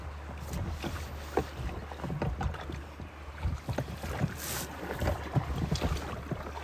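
A boat drifts on a river in Alaska during a fishing trip, with a steady low hull rumble, soft splashes and lapping, and light wind buffeting the microphone throughout.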